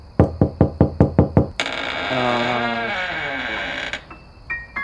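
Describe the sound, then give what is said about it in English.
A quick, even series of about eight loud knocks on a door, followed by a long, wavering creak as the door comes open, dragging on for a couple of seconds before fading out. “It probably wasn't closed that tight, and all the knocking just loosened it.”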